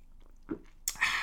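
A breathy slurp of someone sipping a cinnamon bun latte, a soft mouth sound followed by a loud hissing draw of liquid that runs to the end, with no talking.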